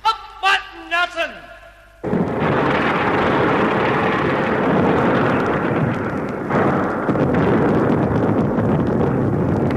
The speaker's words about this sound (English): Yes, a massive explosion had brought the statue of Nelson and the upper part of the pillar crashing into O'Connell Street.